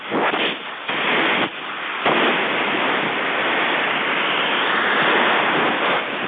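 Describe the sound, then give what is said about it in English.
Heavy storm surf crashing ashore, a loud, steady roaring wash of noise with a couple of brief lulls early on before the churning swells back and holds. No voices are heard. “Oh, sounds like we got a bigger storm coming ashore.”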